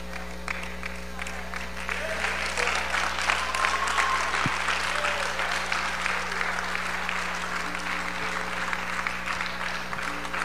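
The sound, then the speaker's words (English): A church audience claps and applauds steadily for about ten seconds, a dense wash of many hands, with faint murmurs and a low steady hum underneath. “Some of you are like, I'm gonna wait on everybody else to clap.”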